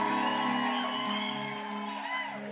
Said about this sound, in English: If you believe it, clap your hands and give God a shout.